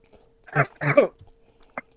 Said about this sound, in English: No, I'm just gonna slurp it out of the cup. I trolled myself, by the way. I didn't pour the water out, so it's not supposed to be a soup.